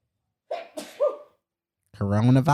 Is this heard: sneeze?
yes